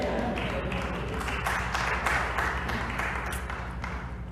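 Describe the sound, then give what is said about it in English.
An audience claps during a sermon in a dense, steady wash of applause that holds at an even volume for several seconds, with faint voices mixed underneath. “You can clap for that.”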